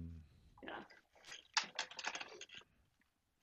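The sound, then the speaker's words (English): A large computer keyboard is shifted and handled, then typed on in a rapid clatter of key clicks that builds to a dense burst before trailing off into quiet. “So you guys can see the keyboard. She's big, right?”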